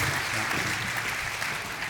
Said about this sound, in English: And everyone up here, let's give all of them a round of applause, too.